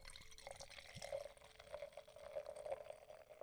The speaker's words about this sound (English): Ooh, he's pouring the beer.